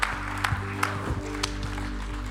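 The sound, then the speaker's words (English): A crowd breaks into dense, steady applause, giving the Lord a giant clap, many hands clapping together in a sustained wash with a few sharper claps standing out, over a low constant hum. “Let's just give the Lord like a giant clap.”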